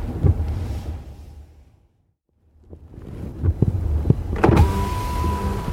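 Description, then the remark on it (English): A car's power window motor whirs as the glass slides down at the valet parking of a traffic circle in front of the Space Needle, with a brief lull, then thumps and a steady tone as it finishes, over low engine rumble inside the car. “go ahead and leave the window down, and if you don't mind, leave the car running”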